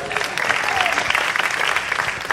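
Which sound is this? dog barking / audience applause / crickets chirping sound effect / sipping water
audience applause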